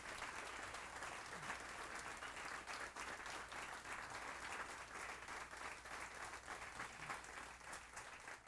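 An audience claps in steady, sustained applause, a dense wash of many hands that holds at an even level for the whole stretch, with no voices standing out.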